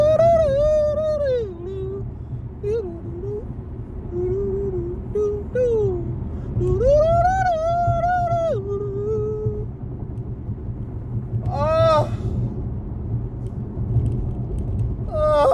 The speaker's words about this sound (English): That's a yawn, boy, but it might as well be an orgasm. I've been yawning, man.